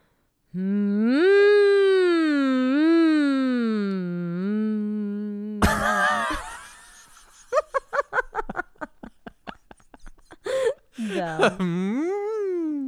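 A person hums loudly as a demonstration: a loud, sustained hum with a gently wavering pitch lasts about five seconds, then breaks off into a noisy burst followed by choppy, laugh-like vocal bursts.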